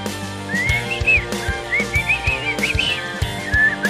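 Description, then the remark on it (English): Someone whistles a wavering, sliding melody, the notes rising and falling in short phrases over a steady instrumental backing with low sustained tones. “But in fact, whistling has a long and fascinating history and is much more than just a way to make music.”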